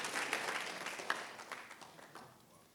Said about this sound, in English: And that is what has happened in Lesotho. Yeah, you can clap that.